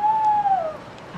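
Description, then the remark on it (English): An owl hoots at night among trees and bushes, a single drawn-out hoot with a steady tone that slides slightly downward as it fades, heard alone against quiet night air with no one speaking. “Sounds like an owl or something.”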